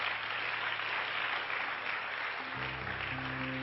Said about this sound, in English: Why don't all the home folks give our guests a good hand clap today?